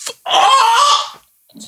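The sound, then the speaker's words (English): A single loud, rooster-like crow holds for about a second, a bright harmonic call that wavers slightly in pitch before cutting off, followed by a brief faint rustle. “Yo, what fucking morning rooster chicken was that?”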